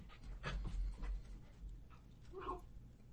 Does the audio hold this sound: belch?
no